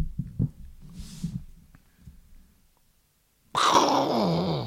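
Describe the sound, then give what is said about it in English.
A spooky Halloween sound effect: low, throbbing groans and thumps, a brief silence, then a sudden loud, harsh shrieking blast that holds to the end. “More Halloween sound effects for your paw.”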